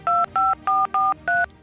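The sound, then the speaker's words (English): Five quick touch-tone beeps from a phone keypad being dialed to call a show guest in Texas, each a short steady two-note tone with brief pauses between, evenly paced and clear, with no talking. “Let's get the show rolling and Christy on the phone.”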